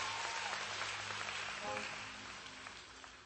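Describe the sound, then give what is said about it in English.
A crowd applauds, clapping their hands for Jesus, a dense wash of many hands clapping at once, steady and fairly loud before gradually thinning out toward the end, with faint voices mixed in. “Will you clap your hands for Jesus and what he's going to say?”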